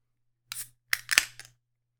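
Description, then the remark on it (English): A beer can is cracked open: a short airy burst, then a quick cluster of sharp metallic clicks and a brief fizzing hiss, fairly quiet with no talking. “All right, let's open it up.”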